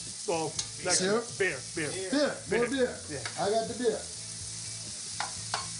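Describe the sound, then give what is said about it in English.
Onions sizzle and caramelize in a hot pan, a steady crackling hiss running the whole time, with indistinct voices murmuring over it for the first few seconds. “That's the onions caramelizing.”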